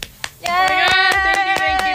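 Applause in steady, evenly spaced claps, roughly four per second, with a sustained high-pitched voice cheering loudly over them after the first few claps.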